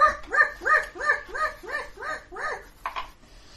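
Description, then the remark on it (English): A person imitates a dog, letting out a quick run of about six yappy barks, close and fairly loud, ending with a short breathy burst. “it's the most fearsome turn of all. It's the dog.”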